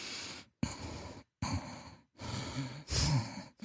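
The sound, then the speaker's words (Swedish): A voice imitates a baby's stuffy, congested breathing: four noisy, snuffly breaths in a steady in-and-out rhythm with brief pauses between them, fairly loud, with no talking. “Så att deras andning låter täppt utan att man är förkyld.”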